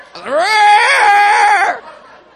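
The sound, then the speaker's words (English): A man lets out a single loud, strained roar while being prayed for, a drawn-out vocal bellow imitating a lion. It lasts about a second and a half, then cuts off. “But that boy was roaring like a lion.”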